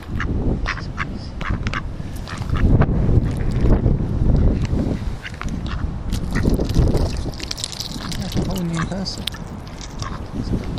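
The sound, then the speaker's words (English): A duck, one of a pair that had been fed by hand earlier, gives a few short quacks, set against steady wind buffeting the microphone and a low, rumbling outdoor background near water, with faint voices murmuring. “The feeding, there's a duck couple, and we fed them earlier, and they feed from your, they were feeding from our hands.”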